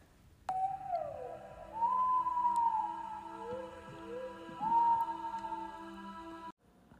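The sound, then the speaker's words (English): Whales calling in the wild: long, eerie tonal moans that slide up and hold, rising and falling over a low, steady underwater hum, with no voices present. “Here's a clip of what whales sound like when they're communicating in the wild.”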